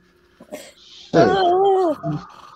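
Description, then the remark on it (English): A dog named Dukes barks, one loud drawn-out whining bark that falls in pitch, followed by a shorter second yelp, with a quieter sound just before. “Are you supposed to be some kind of rescue dog?”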